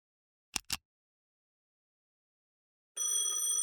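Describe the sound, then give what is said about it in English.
Two quick soft clicks, a pause of silence, then a telephone starts ringing with a bright, steady electronic tone that carries on to the end. No one speaks. “The phone ringing woke me up.”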